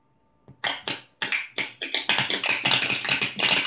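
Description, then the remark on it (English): A poetry applause sound effect of finger snapping in appreciation, starting with a few sharp, spaced snaps and quickly building into a dense, overlapping patter of many snaps, bright and crackly, with no voices. “Girl, that sound like some popcorn popping.”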